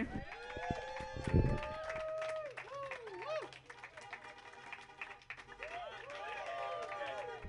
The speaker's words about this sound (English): Thank you so much. Clap it up for me.